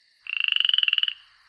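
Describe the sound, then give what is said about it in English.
A single rapid, rattling frog croak, a buzzy trill of about twenty quick pulses lasting under a second, loud with no talking and silence around it. “So okay, bippity boppity boop, and I'm gonna turn their tent into a frog.”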